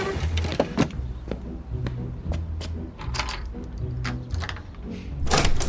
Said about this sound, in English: I knocked this time, so you can't get mad at me.